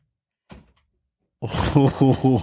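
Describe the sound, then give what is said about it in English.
A single short, dull thunk of a door swinging open by itself, followed by a brief quiet pause, then a loud voice making drawn-out vocal sounds. “it looks like that door just opened.”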